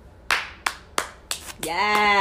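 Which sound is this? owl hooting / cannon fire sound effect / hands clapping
hands clapping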